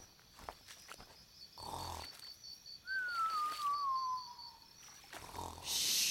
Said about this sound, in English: I think I hear something snoring. You're right, Digger. Look up in the tree. It's a giant sloth taking a nap.